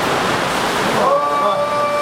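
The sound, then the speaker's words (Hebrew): Steady, dense hiss of falling rain fills the whole clip. Partway through the noise thins slightly and a sustained, humming voice-like tone rises over it. “אז מביא לנו גשם, מביא לנו איזה רע של גשם.”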